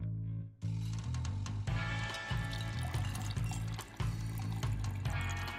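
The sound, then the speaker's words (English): A pool filter sucks up debris, filters it and pumps water back into a pool: a steady rush of splashing water over a low mechanical hum, continuous for several seconds with no one talking. “Sucks up stuff, filters it, shoots water out its ass. I don't know. Back into the pool.”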